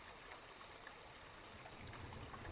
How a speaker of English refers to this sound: For a few moments, just allowing the sound of my voice, the beautiful sounds of the rain and nature, to just bring a soothing, gentle relaxation.